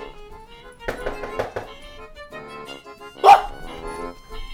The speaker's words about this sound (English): Oh no, if you knock on the wall, I bet he'll bark.